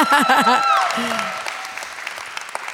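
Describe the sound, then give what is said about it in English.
A church audience claps as a clap to God, a dense burst of applause with a few voices whooping at the start, then the clapping thins out and fades to scattered claps. “Can you guys just give a clap at least to God?”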